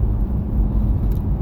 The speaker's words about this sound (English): Did you hear that? Yeah, it's a suspension, I think. It was like, boom, boom, boom. Yeah. Well, it sounded... I think it's on the right side every time I make a right turn.